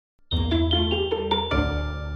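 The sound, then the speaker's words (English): A bell rings out in a quick run of about seven bright, resonant strikes, each ringing into the next, then a final tone that sustains and slowly fades. No voices are heard. “Don't forget to ring the bell when you get there.”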